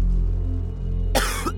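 A man coughs once, a short harsh burst close by that breaks into a second rasp, over a low, steady background rumble, with no talking.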